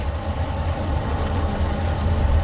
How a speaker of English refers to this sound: I think the train just stopped.